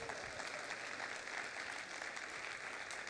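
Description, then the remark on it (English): A crowd applauds steadily, many hands clapping together in a dense, continuous patter that holds at an even level throughout with no pauses. “Well, if you're going to clap, go ahead and do it, all right?”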